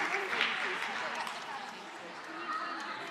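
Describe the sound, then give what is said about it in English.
Steady, dense applause from a sizable standing audience for children heading back to their seats at a Christmas service fills the space, a continuous wash of many hands clapping at once with some crowd murmur underneath, holding at an even level throughout. “And then let's give these guys a massive round of applause.”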